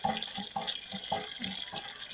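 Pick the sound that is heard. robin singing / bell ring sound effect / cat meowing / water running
water running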